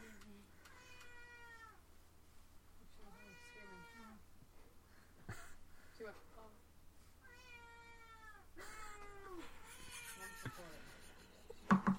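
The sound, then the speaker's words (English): A cat meows repeatedly in a house, about four or five drawn-out, falling meows with short pauses between them, over a low steady hum, with a couple of sharp knocks near the end. “Oh, different cat. Yeah, because I'm in a different house. Different house, different cat.”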